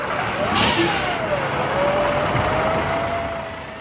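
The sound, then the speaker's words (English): A bus engine runs steadily, its pitch rising and falling as it revs, with a brief hiss of air near the start, as children get on buses for a day trip to Tato Park in Meath. “A group of children are getting on buses to go on a day trip to Tato Park in Meath.”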